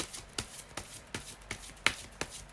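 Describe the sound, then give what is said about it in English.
A deck of tarot cards being shuffled live to pick four cards for a reading, with a steady series of crisp, papery flicks and slaps repeating roughly every third of a second, no voices. “I'm going to do a live shuffle right now to pick the cards.”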